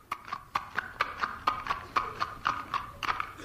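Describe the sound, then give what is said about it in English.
A horse's hooves clip-clop in a quick, steady rhythm as it is brought to a blacksmith to be shod, each hollow knock evenly spaced, with no voices over them. “Ho there, blacksmith! Would you shoe this horse?”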